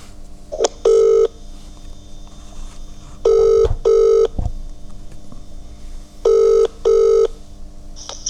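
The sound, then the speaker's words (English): An outgoing phone call rings on the line: three clear double-ring bursts, evenly spaced, each pair two short buzzy tones followed by a pause, fairly loud, with no talking. “And we're calling Nick.”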